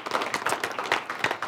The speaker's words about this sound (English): So give them a round of applause as well.